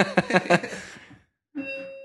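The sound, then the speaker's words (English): A doorbell chimes, three quick ringing tones that fade out, then after a brief silence a second steady chime tone starts and holds, as someone arrives at the door. No talking. “And there's my doorbell.”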